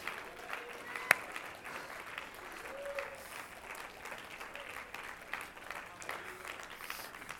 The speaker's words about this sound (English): Somebody clap your hands and just shout a little bit.